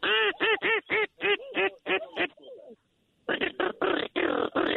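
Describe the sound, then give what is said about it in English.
A duck call blown by a hunter in a duck blind to call in ducks such as teal and divers gives a loud, rapid series of nasal quacks in a steady rhythm, falls briefly quiet, then launches into another run of raspy quacking. “He's calling in all types of ducks.”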